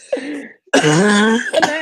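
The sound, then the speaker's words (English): A loud fit of coughing and throat clearing after swallowing spit: a short rasping burst, a brief pause, then a longer strained, gurgling cough that trails into a final sputter. “That cough was questionable, yada.”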